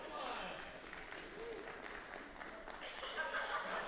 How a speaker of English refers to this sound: Do you hear that? That's 30% of your congregation clapping. That's what that is.